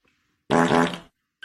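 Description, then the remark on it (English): A single loud fart lasting about half a second, buzzy and sputtering, then silence before another brief burst starts at the very end. “Whoa, I farted.”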